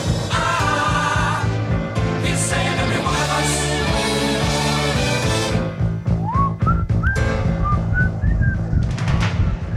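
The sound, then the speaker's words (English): Someone whistles tunelessly, a handful of short rising and wavering notes in the second half, over a thick, steady layer of droning tones that fills the whole clip. “This is me tunelessly whistling.”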